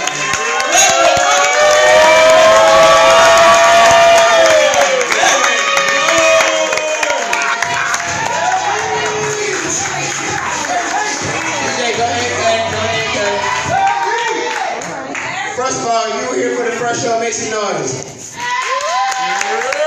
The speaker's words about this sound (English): So I need you to clap your hands and make some noise. Clap your hands and make some noise.